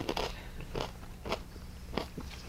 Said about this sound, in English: Sorry about the crunching, you guys. Corn nuts are way too loud.